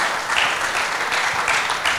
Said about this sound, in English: Awesome. Yeah, come on, we can clap that.